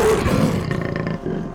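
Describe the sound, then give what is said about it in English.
A panther gives a deep, rumbling growl that swells into a loud roar, then trails off into a lower, throaty rumble over about a second and a half, with no voices. “The panther laying at her bare feet growled.”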